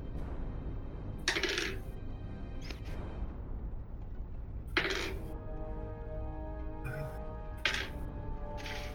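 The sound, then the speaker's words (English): Dice clatter onto a hard table in several sharp bursts, each hit ringing briefly before the next rattle, fairly crisp over a low background hum. “Oh, no. Wrong dice.”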